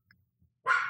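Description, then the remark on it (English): A single loud, sharp bark from dogs right outside a door bursts in after a near-silent moment and is cut off abruptly. No one speaks. “I'm just waiting for the dogs to stop barking.”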